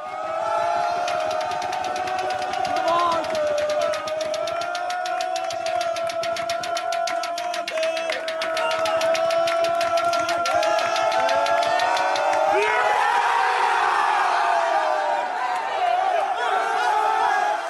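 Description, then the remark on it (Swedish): A group of players in front of a TV cheer and shout together as they wait out the final seconds of the Chelsea–Manchester City match: a loud, continuous wall of excited voices with whoops that swells into an even bigger eruption of cheering toward the end. “Och när vi då nämner tid så är det klart att vi måste ta ut tidpunkten, för så här lät det när spelarna väntade in de sista sekunderna framför TV:n.”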